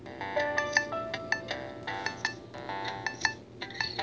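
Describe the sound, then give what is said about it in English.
An outgoing phone call's ringing tone as a guest is phoned in: bright, chiming electronic tones repeating in quick, clinking bursts with steady sustained notes beneath, moderately loud, with no one talking. “I am now going to phone in”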